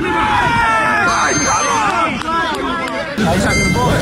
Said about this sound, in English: Yep, the man in the middle is using a harmonica instead of a whistle for the match.